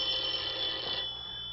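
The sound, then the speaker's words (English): A telephone bell rings in a bright, high-pitched continuous jangle that holds steady for about a second, then thins out and trails off. No one speaks. “Just sit there until I answer the phone.”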